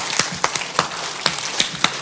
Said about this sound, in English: Here we go. 1, 2, 3. Everybody start clapping.